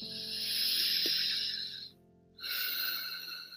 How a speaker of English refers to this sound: So begin to come back to your normal breath, breathing in and breathing out.